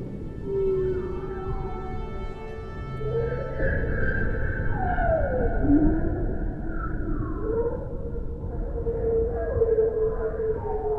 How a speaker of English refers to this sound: Bearded seals coming out of the ether as though they were from the Martian Chronicles. Beluga whales chirping and chattering and clicking.